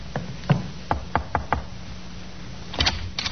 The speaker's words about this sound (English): The sergeant knocked on the door of the second floor front.